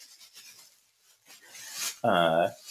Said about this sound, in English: All right, okay, here, we're going to do a little ASMR now. It's going to be, we're taking this one as plastic bag and glass sounds.